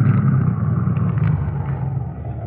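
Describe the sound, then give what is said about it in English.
A car engine rumbles steadily, a low, continuous drone that eases slightly toward the end as the driver pulls the car off the road and stops. No one speaks. “Now get the car off the road and stop.”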